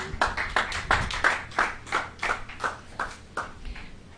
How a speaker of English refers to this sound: Y'all give the Lord a good clap offering.